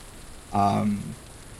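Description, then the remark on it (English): Steady, soft rain hisses throughout, an even wash of falling drops, while a brief voiced sound rises over it midway for about half a second before the rain continues alone. “You see someone heading back up as opposed to down, very faintly in the distance through the rain.”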